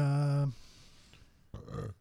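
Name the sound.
burp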